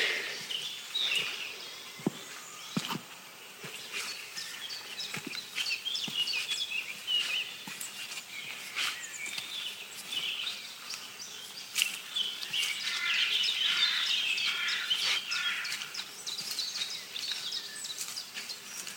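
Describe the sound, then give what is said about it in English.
A dense outdoor dawn chorus of blackcap birdsong, warbling phrases overlapping continuously, with scattered sharper chirps and a faint insect-like buzz underneath; no one speaks. “But most of this bird song is black caps.”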